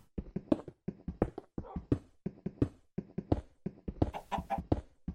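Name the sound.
chicken clucking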